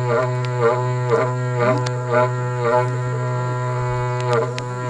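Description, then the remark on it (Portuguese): A berrante cattle horn blows one long, steady, droning note, loud, its pitch bending and swelling in rhythmic pulses roughly every half second. No voices are heard. “Eita, berrante danado!”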